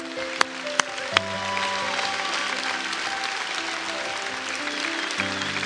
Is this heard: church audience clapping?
yes